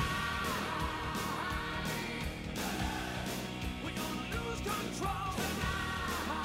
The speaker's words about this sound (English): They have something called additional shouts. I guess people going like, hey, yeah. Luke Perry is listed as one of the people doing additional shouts.